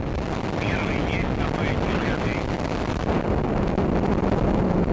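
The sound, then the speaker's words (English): A Russian rocket carrying a Mexican satellite roars continuously during liftoff, a loud, dense, crackling rumble that holds steady throughout, with a faint voice briefly audible early on beneath the noise. “A rocket carrying a Mexican satellite malfunctioned Saturday shortly after liftoff.”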